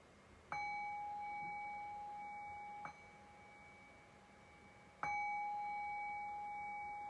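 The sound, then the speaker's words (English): A meditation bell is struck three times at a slow, even pace to close a brief guided meditation, each clear ring lingering with a long, shimmering tone that overlaps the next strike; no voices are heard. “And I'll cue that by ringing the bell 3 times.”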